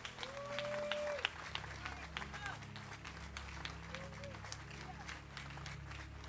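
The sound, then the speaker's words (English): A crowd claps together as a clap offering for God the Son, in a dense, sustained patter of many hands, with murmuring voices and a low background hum throughout. “Clap offering for God the Son.”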